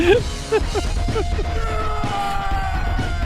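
A screaming goat sound effect: a few harsh, wavering bleat-like yells in quick succession, then a steady high sustained tone ringing out over a low rumbling background.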